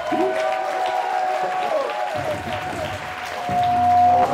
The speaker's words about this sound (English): Before I bring this man up, I need y'all to stand on y'all feet and start clapping right now. Start clapping right now for the one, the only